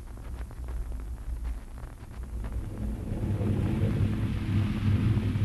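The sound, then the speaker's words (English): Deep, rolling rumble of an approaching thunderstorm, low and continuous, swelling gradually louder toward the end with no voices over it. “Get out of back here to the barn. Storm's coming.”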